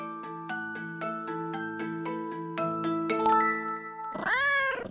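A bright run of ringing, bell-like chimes plays for several seconds, then one loud cat meow rises and falls at the very end.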